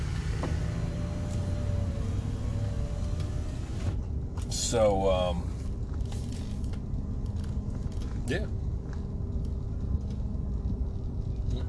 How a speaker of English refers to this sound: Truck coming in 6 o'clock, fucking really fast. Got a bogey coming up my ass.